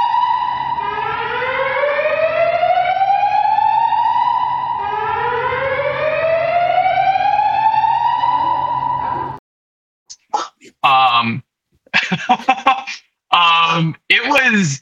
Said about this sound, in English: right as I open the door, the fire alarms go off. And with every level you get down, the fire alarm gets louder and louder